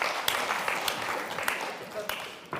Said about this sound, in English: Okay. Thank you very much. Round of applause for our, thank you very much, for our volunteers.